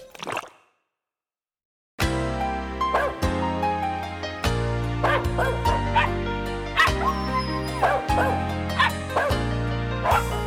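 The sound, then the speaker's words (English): A small dog barks and yips in short, high bursts, repeating every second or so over steady instrumental music with a deep sustained bass. The barks sound fairly loud. “Oh, where has my little dog gone?”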